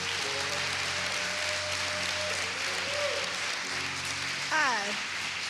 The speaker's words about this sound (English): And I would just, can we just give our pastors a round of applause? Thank you.